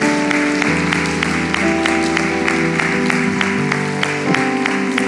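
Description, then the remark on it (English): An audience of ladies claps steadily for a group of men in a morning gathering, with sharp, evenly spaced claps over sustained, loud organ-like chords that hold throughout. No one speaks. “And I want to just ask all the ladies right now, let's just give all these mighty men a great big round of applause this morning.”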